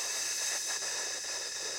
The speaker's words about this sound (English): I do it three times, really deep, expanding my chest, hold for about 2 or 3 seconds, and then close my teeth and breathe out through my teeth.